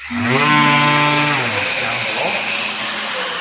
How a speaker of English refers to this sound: So you can obviously hear that when we trigger this, it'll trigger a vacuum.